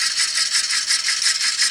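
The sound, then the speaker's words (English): A car engine cranks steadily with a rapid, rhythmic mechanical whirring and rattling, pulsing several times a second without catching. No voices are heard. “I'm going to start this car up.”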